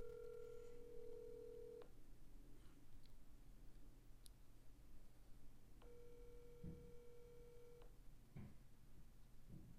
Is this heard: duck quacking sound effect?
no